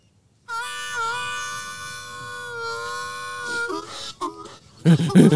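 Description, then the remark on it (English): A voice imitates a train whistle: a long, steady, high wail that wavers slightly, then breaks into shorter warbling hoots before ending in a loud, noisy rush. “So much like Sally Field having an orgasm, this is what a train sounds like.”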